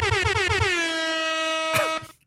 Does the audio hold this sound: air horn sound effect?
yes